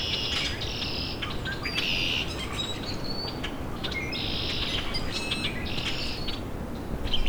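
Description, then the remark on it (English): Several common grackles call repeatedly in harsh, squeaky bursts, the birds overlapping over a steady outdoor background hiss. No one speaks. “I've got several common grackle around me.”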